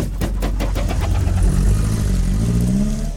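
A car engine revs loudly, its low rumble steady at first and then climbing in pitch as the throttle opens, with no voices over it.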